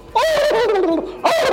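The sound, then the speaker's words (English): A voice imitates panicked turkeys being led off to have their heads chopped off, with a loud, warbling, high-pitched gobbling cry, one long wavering burst followed by the start of a second. “And so I'd stick the tongue out, and the girls would make a sound like turkeys being let off to have their heads chopped off.”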